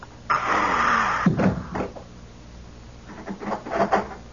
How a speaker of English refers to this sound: Close the door. What? Come in, close the door.